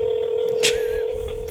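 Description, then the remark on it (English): A telephone keypad tone sounds as one steady, loud electronic beep held for over a second, with a brief click partway through and no voices. “Or we can just prank call him.”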